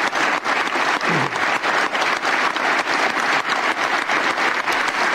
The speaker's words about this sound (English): Here is Hunter and his sister getting applause at the Irish Parliament.